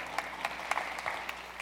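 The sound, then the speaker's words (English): A crowd applauds with steady, overlapping claps, a few sharper individual claps standing out from the dense patter, moderately loud and continuous throughout. “Oh, you can clap if you want.”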